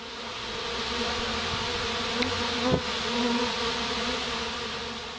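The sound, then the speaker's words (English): A steady, droning bee buzz sound effect fills the whole stretch, loud with a constant hum and faint flutter, no voices present. “All right, that sound means it's time for our community buzz, where we take a look at what the fans are talking about.”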